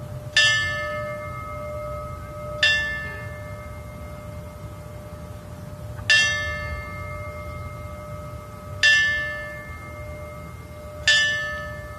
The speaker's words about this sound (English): 18 fallen firefighters were honored at the ringing of the bell ceremony.